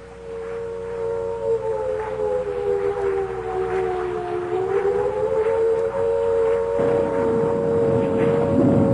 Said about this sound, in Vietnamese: Tôi chợt nghe lẫn trong tiếng mưa gió, tiếng gì đầu tiên nghe như tiếng sáo diều, rồi mỗi lúc một to dần, để cuối cùng thành tiếng còi hụ báo động.